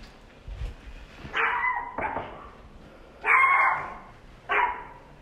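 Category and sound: animal, dogs barking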